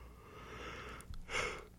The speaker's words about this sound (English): You know, I can't stop yawning all of a sudden.